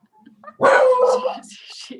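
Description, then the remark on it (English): A dog barks at people walking in the hallway, letting out a loud bark that stretches into a drawn-out, whining yelp, followed by a faint trailing whimper. “stop being a guard dog”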